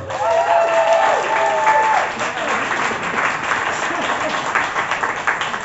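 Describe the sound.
An audience applauds steadily, a dense wash of clapping that holds fairly loud throughout, with faint voices and a few whistling cheers rising briefly near the start.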